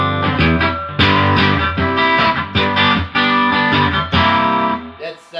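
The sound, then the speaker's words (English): A bright, chimey electric guitar with single-coil and humbucker pickups strums ringing chords through an amp, with several loud attacks about a second apart that sustain into each other, prominent with no talking. “It's something about that single coil tone that you can get out of it, and also the humbucker tones.”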